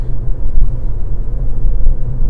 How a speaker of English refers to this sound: Like, this is just a car ride.